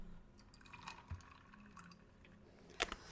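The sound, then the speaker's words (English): Two tablespoons of grenadine syrup are poured into a cocktail glass while making a hurricane cocktail, a faint trickle broken by soft irregular drips, with one slightly louder splash near the end. “And then 2 tablespoons of grenadine syrup. I'm just gonna pour it in.”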